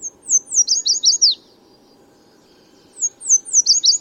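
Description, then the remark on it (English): A bright orange Baltimore oriole sings two short phrases of rich, clear whistled notes, separated by a brief pause, distinct over a faint low background hum. “Biologists believe this bright orange Baltimore oriole descended from a South American ancestor”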